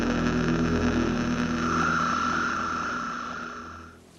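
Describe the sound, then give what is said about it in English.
Steady rain patters over the low drone of passing evening street traffic in London on a Tuesday evening, an engine rumbling before the scene fades near the end; rain patters on window panes and slate roofs, rattling in gutters and gurgling down drains, as cars, minicabs and buses queue. “The rain has returned, pattering on window panes and slate roofs, rattling in gutters and gurgling down drains.”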